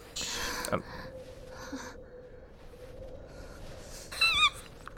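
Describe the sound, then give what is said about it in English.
Heavy, breathy gasps from a woman come in a few bursts over a low background hum, ending in a sharper, squeaky intake of breath. No words are spoken. “All I heard was breathing for a second there.”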